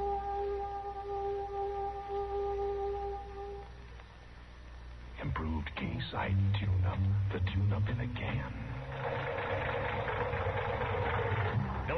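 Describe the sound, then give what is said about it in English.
A worn car engine with a sticking valve idles with a steady, low rumble throughout, a rough mechanical drone that continues as people begin talking over it partway through. “Say, that engine of yours sounds like real tired iron.”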